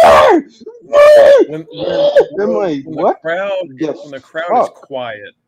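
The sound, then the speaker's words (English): A person vocally imitates a wrestler's loud, high-pitched screams during matches, followed by shorter, choppier grunting and whining noises in quick succession. “She's like, she screams and like high pitch. And grunts and...”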